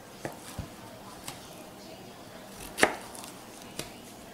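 A knife chops zucchini on a cutting board, cut as for a stir fry while making a Thai curry, in about six separate, unevenly spaced strokes, fairly quiet, with one sharper, louder chop near the middle and no talking.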